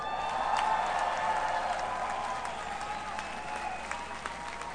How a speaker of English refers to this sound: If we could get another big round of applause.